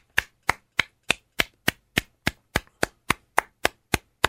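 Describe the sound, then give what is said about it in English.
Steady, evenly spaced hand claps, about fifteen sharp crisp strikes in quick rhythm, fairly loud, with no voices alongside. “That's a round of applause for all the truck drivers.”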